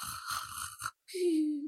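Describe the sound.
A person mimics snoring: a rough, rattling inhale in short pulses, a brief pause, then a long, whistling, slightly falling exhale.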